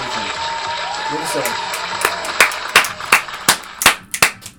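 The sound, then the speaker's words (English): A steady hiss with faint murmuring gives way to a burst of loud, sharp claps, about a dozen in an uneven, scattered rhythm, a brief round of applause for the new Shaft trailer starring Samuel. “Big applause for that.”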